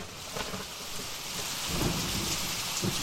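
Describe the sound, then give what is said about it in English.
A rain and thunder sound effect: steady rain hisses throughout, with low rumbling thunder building in the second half, a continuous stormy wash with no voices. “I'm going to get electrocuted if I keep the rain going.”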